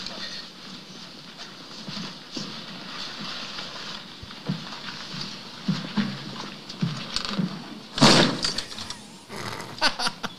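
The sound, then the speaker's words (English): A door opens with a sharp knocking thunk partway through, followed by the shuffling footsteps of Loomis walking in, over a steady hiss of room noise and faint movement. “Loomis walking into the door.”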